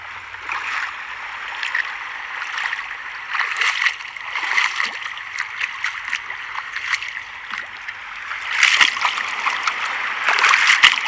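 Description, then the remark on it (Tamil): Water splashes and sloshes repeatedly across a playing ground flooded with rainwater, in uneven bursts every second or two, with the louder splashes toward the end and no one speaking. “என்னடா இது, கிரவுண்டு ஃபுல்லாக தண்ணியாக இருக்கு, இதுக்காகவாடா இவ்வளோ தூரம் வந்தோம்?”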